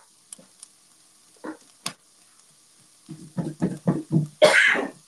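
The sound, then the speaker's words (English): A loud sneeze, caused by Tony Sachery's seasoning with cayenne pepper sprinkled while cooking, bursts out near the end, preceded by a quick run of short, rhythmic breathy gasps; a few faint clicks and taps come earlier. “I need to remember Tony Sachery's makes me sneeze sometimes.”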